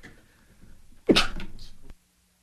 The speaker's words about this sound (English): Oh, that was a good sneeze.